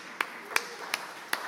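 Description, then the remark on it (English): At a church, four sharp, separate hand claps for the speaker's wife at a slow, slightly uneven pace, more like a brief token clap than full applause, over a faint steady hiss with no talking. “Give her a clap.”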